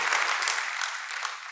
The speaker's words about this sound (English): Let's give our kids a great hand clap. Good job.